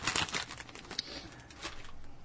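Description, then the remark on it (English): Cajun-seasoned potato chips spill onto a small plate for tasting in a dry, crackly rattle of many small clattering bits, with a sharp click partway through and a second rustling burst before it trails off. “I pour some chips on my little thing here.”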